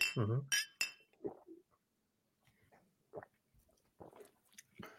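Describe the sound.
Glasses clink together in a quick toast near the start, followed by sipping, swallowing and small mouth sounds with faint murmured voices in between.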